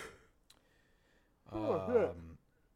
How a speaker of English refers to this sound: For real, yawning on me right now. I'm yawning on you, bro.